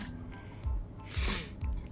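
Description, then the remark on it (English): A few wet sniffles in quick succession, each a short breathy intake through the nose, with no talking in between. “Excuse me sniffling, y'all.”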